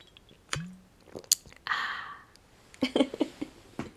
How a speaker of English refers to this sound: My mouth's so dry. It's like Gandhi's flip-flop. Let me just take a sip of this beer because I'm so thirsty. Don't know if you can hear that. Bit of ASMR for you.